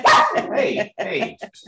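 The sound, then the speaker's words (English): A small dog barks and yaps excitedly in a quick burst of sharp, high-pitched barks, fairly loud, trailing off into a couple of shorter yips. “My little dog tends to think he's a grizzly bear at times.”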